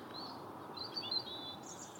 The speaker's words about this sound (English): Mostly robins. There's the odd song thrush. They're all quietening down.